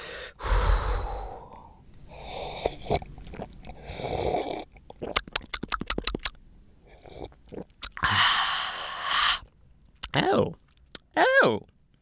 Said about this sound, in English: Oh, this seems like it's going to be a bold and vibrant red that will pair well with the sweet and exciting flavors of my barbecue chicken pizza. I better go in for a sip.